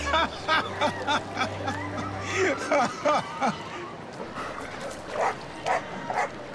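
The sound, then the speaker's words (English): A dog named Seaman barks repeatedly in quick, uneven bursts, with yips between barks and people talking underneath; a low steady hum fills the first few seconds. “Seaman, you dog, get back in here.”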